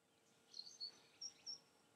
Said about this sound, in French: Les oiseaux tweetent, c'est un peu plus agréable que tous ces humains qui tweetent.